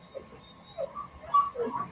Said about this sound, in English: We can hear the puppy now. Hello, hear that puppy? See how sad puppies are in Canada?